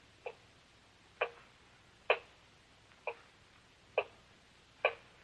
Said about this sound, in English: Terrible clock. Ticking. Ticking. Yeah, I know. I've been sitting here listening to it. I can't stand it anymore. I'll stop it.